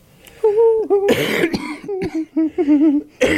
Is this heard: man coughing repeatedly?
yes